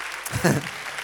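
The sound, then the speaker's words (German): A short burst of audience applause, a dense patter of clapping with a brief voiced shout or cheer rising over it midway. “Aber sau gut geworden. Come on. Applaus.”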